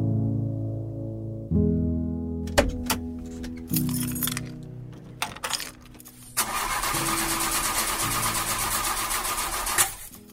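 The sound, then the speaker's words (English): An old car's engine cranks and whines in uneven bursts, broken by sharp clicks and rattles, then churns noisily for several seconds before cutting off without ever catching and running, with the keys in the ignition. “It was worth a shot. Keys were still in the ignition. But no good?”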